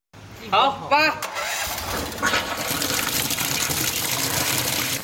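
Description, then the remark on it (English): A high-pressure water gun starts with a couple of short rising whines, then settles into a loud, steady hiss of water blasting thick moss off red brick pavement to clean a walkway. “Under the high pressure of the water gun, the thick moss covering the ground is washed away, revealing the vibrant red color of the bricks below.”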